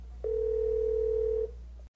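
A steady telephone dial tone hums clearly for just over a second during a woman's phone call, then cuts off, leaving a faint low background rumble; no one speaks.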